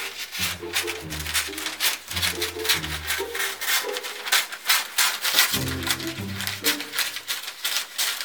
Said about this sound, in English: Step 4. Take your scissors and cut paper. Cutting paper.